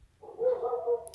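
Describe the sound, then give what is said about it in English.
A female dog whimpers in one drawn-out, high whine lasting about a second, wavering slightly in pitch and moderately loud, followed by a brief click at the end. “Oh, he's crying again.”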